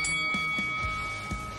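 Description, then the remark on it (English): A boxing ring bell rings out to start the fight, with a bright, sustained metallic tone that hangs steadily, joined by a few soft, irregular low knocks underneath. “Now go back to the corner and come out fighting at the bell.”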